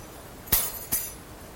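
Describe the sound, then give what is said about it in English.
Keys drop and hit the ground with two sharp metallic clinks about half a second apart, bright and jangly, the second slightly softer. No one speaks. “Every time I drop my keys, they will fall to the ground just like that.”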